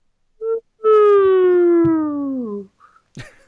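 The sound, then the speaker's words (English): A slide whistle gives a short toot, then a long, steady note that glides slowly downward in pitch before cutting off. A brief vocal exclamation follows. “We'll just say play in the middle of our slide whistle.”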